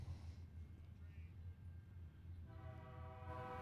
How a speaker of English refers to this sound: Here comes a train. Right. Everybody loves a train.